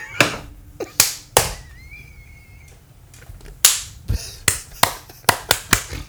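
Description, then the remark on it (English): Around a dozen sharp, loud hand claps ring out, scattered irregularly with a quiet gap in the middle and a quick burst toward the end, with no talking, clapped to sync a recording. “wait, do we have to clap again?”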